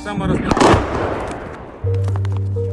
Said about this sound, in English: We heard the boom of an incoming artillery.